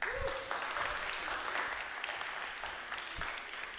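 An audience applauds steadily, a dense wash of many hands clapping at once, sustained and fairly loud throughout with no one speaking over it.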